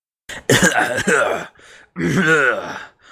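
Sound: throat clearing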